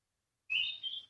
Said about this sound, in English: Oh, beautiful. She agreed. The bird behind you agreed.